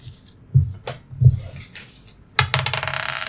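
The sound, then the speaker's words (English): Two six-sided dice are re-rolled after showing a 2 and a 1, clattering and tumbling across a hard surface, a couple of sharp knocks followed by a busier rattle of rolling and settling, with no talking. “So, gosh, I don't like these six-sided dice. There's a 2 and a 1, so I got to re-roll both.”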